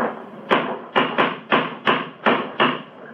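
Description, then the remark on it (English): A cane strikes stonework seven times in an uneven rhythm, each knock a sharp, hard crack that quickly dies away over a low background hum, with no voices. “It's a hard knock.”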